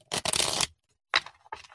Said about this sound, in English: Yeah, shuffling cards right here on live radio. I love it. That one wasn't as good.